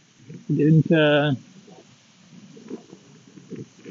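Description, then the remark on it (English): Wind buffets the microphone in uneven, low rumbling gusts throughout as the speaker walks outdoors, briefly overtaken early on by a loud, tonal vocal exclamation. “Yeah, you may be hearing some of that wind, yeah?”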